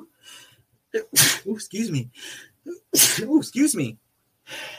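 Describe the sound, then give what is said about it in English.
Loud sneezes, two sharp bursts a couple of seconds apart, each followed by voiced, breathy sounds, with a soft intake of breath at the start. “I think that's the first time I've ever sneezed on air, guys.”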